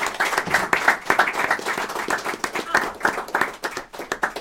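Sustained applause from a small group after presentations, dense irregular clapping filling the whole stretch at steady moderate loudness, with no one speaking over it.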